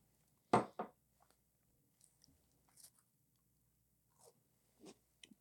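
A loud, crisp bite into a shortbread cookie with a hint of lemon, followed by a second crunch and then quieter, scattered chewing sounds with small crumbly snaps, with no one speaking.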